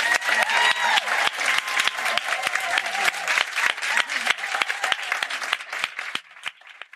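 Loud, sustained applause from a large audience, dense overlapping claps with a few whistles and cheers, holding steady before thinning out and fading over the last second.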